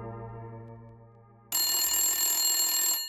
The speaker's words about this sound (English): Miss O'Connor answered the phone on the first ring.